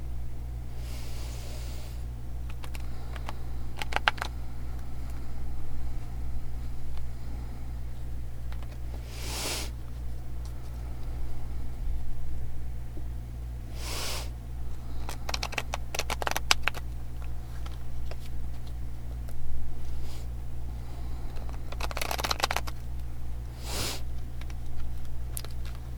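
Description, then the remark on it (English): An Osho Zen Tarot deck being shuffled, in short papery bursts spaced irregularly, some in quick clusters, over a steady low hum with no talking. “Osho Zen Tarot deck, and I'm going to be quiet for just a moment while I shuffle and bless the cards.”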